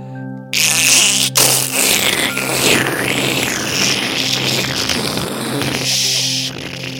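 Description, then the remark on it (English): A voice imitates a pelican swallowing a fish: after a brief low hum, a loud, buzzing and gurgling rasp runs steadily for about six seconds before cutting off. “The pelican swallowing a fish.”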